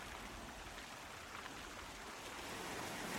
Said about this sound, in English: I sit down, close my eyes, and listen. Waves crashing against the rocks, small pebbles rustling down the beach in the withdrawing water.